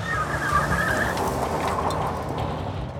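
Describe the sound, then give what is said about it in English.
A car speeds off with a brief, high tire squeal at the start, followed by a steady, loud engine roar and road noise that carries on throughout. No one speaks. Pernell speeds away from the scene in Jeannie's own car, with her in the passenger seat. “Then, he sped away from the scene.”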